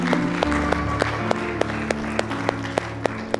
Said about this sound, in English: Can we give our youth pastors and our students a hand clap, please?